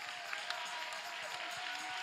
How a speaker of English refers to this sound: Clap your hands and lift your voice and give God praise.